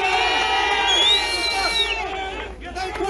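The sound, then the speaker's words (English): A crowd at an anti-immigration protest outside Finglas Garda station in Dublin cheers and shouts together at night, a dense wash of many raised voices with some high whoops rising above the roar, steady and loud throughout. “That is what we hear to the cheers there at the end of the anti-immigration protest.”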